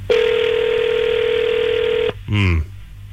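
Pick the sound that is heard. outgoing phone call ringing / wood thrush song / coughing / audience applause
outgoing phone call ringing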